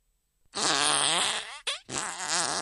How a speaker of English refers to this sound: In easy mode, there are 6 numbers to choose from. Each number will play a fart sound, like this.